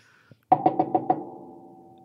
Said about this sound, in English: So we knocked on the door. It was probably like midnight or like 1 a.m. right now. We knock on the door.